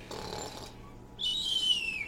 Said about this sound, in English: And snoring.